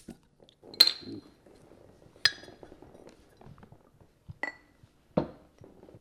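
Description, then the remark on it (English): A slightly warm can of Innis and Gunn beer cracks open with a sharp pop, followed by a few bright glassy clinks and soft handling noise, with a low, faint pouring gurgle running underneath as the beer is poured. “So let's pop that.”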